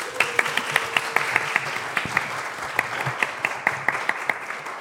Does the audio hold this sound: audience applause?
yes